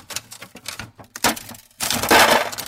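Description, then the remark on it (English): Brittle cracking and snapping of ice breaking: a run of sharp crunches and pops, ending in a louder, sustained crunching burst. No one speaks. “Ice breaking? There it is.”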